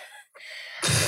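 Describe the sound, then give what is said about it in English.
A breathy inhale and a brief pause lead into a loud, rough burp, rumbling low and lasting to the end. No one speaks. “We've got a heavy breather. Burping shit, so rank. Burpy, refluxy”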